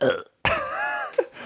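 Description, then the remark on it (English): A dog lets out a single long, rumbling burp, fairly loud, preceded by a brief softer sound and ending with a short grunt. “he will be emitting a burp very soon, right, buddy? He likes to burp in the morning.”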